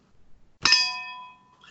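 Drink cans clink together in a toast before starting to drink: a quick double-tap of metal followed by a bright, high ringing tone that fades over about a second, with no talking.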